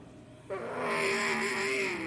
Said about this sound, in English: Big train of cars as we go back to green.